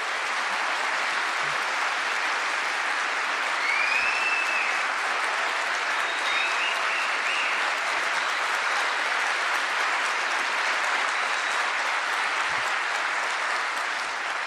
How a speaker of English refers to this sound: So that we don't have to have a cultural cringe, can you demonstrate a big Melbourne round of applause for the Slate Culture Gabfest? Thank you guys so much.